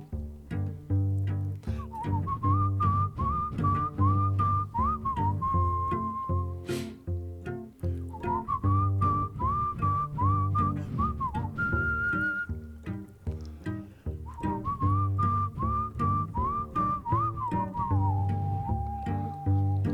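A whistled melody floats over a steady rhythmic music backing, carrying long wavering held notes in repeated phrases with short breaks between them, loud throughout.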